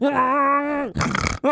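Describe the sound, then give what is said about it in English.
A voice imitates a cow's moo: a sustained, steady low vocal drone of nearly a second, followed by a harsh, raspy snore-like rattle, then a brief restart of the moo. “That's a great cow noise. That sounds just like a cow.”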